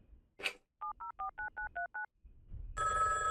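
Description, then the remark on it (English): A phone's keypad beeps through seven quick dual-tone presses in a steady rhythm as a number is dialed for a prank phone call, preceded by a short click of the handset and followed by a buzzy ringing tone on the line. “Hey, you wanna make a prank phone call?”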